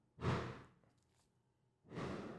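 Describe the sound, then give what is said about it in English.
Two muffled fireworks booms, each a broad rumbling burst that swells quickly and fades, separated by a quiet gap of more than a second, with no talking. “Yeah, that's fireworks.”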